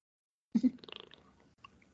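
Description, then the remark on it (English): A single sip from a drink: a short wet slurp with a soft mouth click, trailing off into quiet swallowing noises. No one speaks. “Oh, I heard that sip.”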